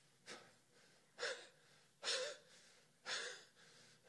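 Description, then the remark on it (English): A voice imitates the desperate panting of a destitute cry: four sharp, breathy gasps at a steady pace of about one per second, with no speech around them. “You know what a destitute cry looks like? It's panting. It's panting.”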